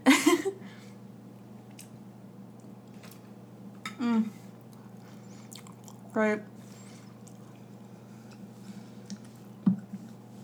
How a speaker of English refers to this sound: I'm so sorry, you guys. I will cut out how long I chew for.